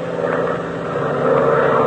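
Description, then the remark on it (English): A small propeller plane's engine drones steadily and loudly throughout, a continuous hum with a slight swell in intensity toward the end and no voices, as the plane leaves the airfield heading for Ridgeville. “Now we're off the field. We better head straight for Ridgeville.”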